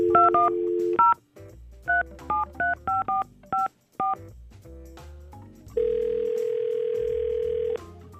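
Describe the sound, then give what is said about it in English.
A phone number is dialed to call a man: a brief tone, then a quick string of touch-tone beeps in uneven rhythm, followed by a long, steady telephone tone. Clear, with no talking. “so I guess we're going to try to get him on the phone and hopefully we can set him back up.”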